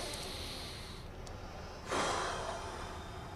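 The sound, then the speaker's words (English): A deep, slow breath drawn in through the nose, then a long, airy exhale, demonstrating a relaxation breath for anxiety, with no talking. “If you use the word relax on the exhale, you're now having the upper brain take over 2 functions normally controlled by the lower brain, breathing and muscle tension.”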